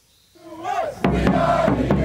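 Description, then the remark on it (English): A loud crowd of American soccer fans in Doha, Qatar, cheers and chants for the U.S. team at its World Cup match against Wales, voices swelling from a single rising shout into a dense, sustained roar punctuated by sharp rhythmic claps or drum hits. “Cheering on the Stars and Stripes in their first World Cup match in 8 years, American fans in Doha.”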